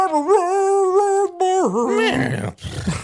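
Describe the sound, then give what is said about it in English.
A person's voice imitates a bluetick hound dog's howl: a loud, sustained wavering tone for about two seconds that bends downward, then trails into rough, breathy vocal noise. “She sounds like a blue tick hound dog.”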